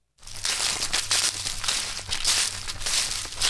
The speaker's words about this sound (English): That sound, you know, fall is here now when you hear those leaves crunch.